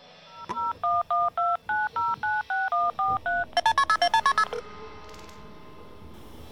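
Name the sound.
telephone number being dialed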